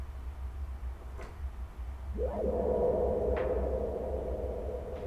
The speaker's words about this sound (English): So you can do this thing where you like bring in a little bit of noise and then have there be some tails. Pretty cool. That sounds a little like gated reverb. Let's just do a simple reverb.